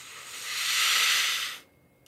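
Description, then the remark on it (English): A long, deep breath drawn in during a breathing exercise, an airy hiss that swells steadily for about a second and a half, then stops abruptly, leaving near silence. “Two more, slower, deeper.”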